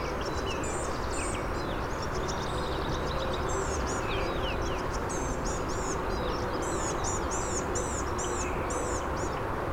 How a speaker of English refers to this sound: Wow, this blue-gray gnatcatcher is really singing.